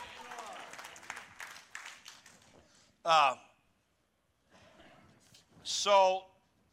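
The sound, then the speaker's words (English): A crowd applauds for a couple of seconds, steady at first and then thinning out, followed by short, loud vocal outbursts after a quiet pause. “Go ahead and applaud.”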